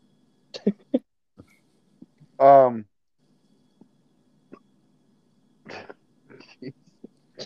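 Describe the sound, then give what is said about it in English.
Several short, sharp hiccups jerk out at irregular intervals. One about midway is louder and more voiced than the quieter clicks and gulps around it. “I've just got like the fucking hiccups.”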